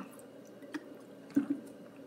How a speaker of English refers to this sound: And excuse me, let me take a drink of water.